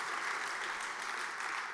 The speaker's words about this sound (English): Now, will you give these people a big hand of applause? Thank you, winning team. You can be seated.